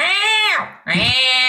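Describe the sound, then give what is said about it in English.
A bright, nasal 'metal' voice, resonating in the mask around the eyes and nose, imitates an irritable cat, giving two loud whiny meow-like cries, the first falling away before a short dip and the second rising sharply and holding. “The exaggerated version often sounds like an irritable cat.”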